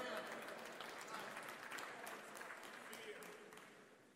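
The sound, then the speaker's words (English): An audience claps steadily, a dense, sustained patter of many hands that holds at an even level for about four seconds before easing slightly toward the end. “I'm glad you're clapping, but I got a little follow-up with that.”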